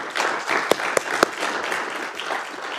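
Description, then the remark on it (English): A First Baptist church crowd applauds the worship team after worship, a dense wash of many hands clapping steadily, with a few sharp, louder individual claps standing out near the start. “Hey, let's give a round of applause to our worship team.”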